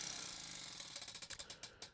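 A prize wheel spins in an unofficial wheel spin, its rapid clicking slowing into distinct, evenly spaced ticks that spread further apart as it winds down. Bright, crisp clicks with no voices.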